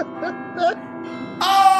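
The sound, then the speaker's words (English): Bells signalling an interruption start ringing partway through, bright sustained tones with a shimmering upper ring that swells louder, preceded by quieter murmuring, voice-like sounds. “We got the bells.”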